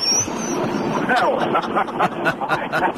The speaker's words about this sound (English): I'm only articulating like this because I'm in the car and I thought it might be a little noisy. It sounds a little bit like you're in a wind tunnel.